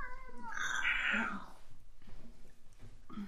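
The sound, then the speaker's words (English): A cat lets out one loud, drawn-out angry yowl lasting about a second and a half, rising and wavering in pitch, followed by quieter rustling and faint background noise. “I love the idea because cats do rage. They really do.”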